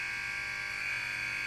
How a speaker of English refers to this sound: It's also the buzzer from St. Pete's College. It was just in the NCAAs. That's right. To the Final Eight.